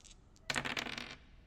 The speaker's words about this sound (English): I rolled a 4 and a 7. I hate this game. Stupid dice.